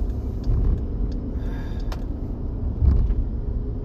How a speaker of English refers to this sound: So, May 11th, I'm joining US 19 North, finally, after getting blocked out a couple times by a couple of different tiny-ass cars. Now I'm just trying to get on the highway, and a truck isn't letting me off the ramp. Cool, thanks, bro.